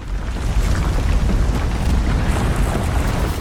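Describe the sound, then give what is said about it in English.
A deep, heavy rumble like rolling thunder, heard from a school classroom as a low rumble in the distance that gets louder and louder, fills the whole stretch, dense and roaring with a strong low end, loud throughout with no voices. “And then there was what could only be described as a low rumble of thunder in the distance that just got louder and louder and louder.”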